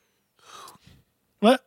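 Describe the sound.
A person yawns, starting with a breathy drawn-in breath and ending in a short, loud voiced groan.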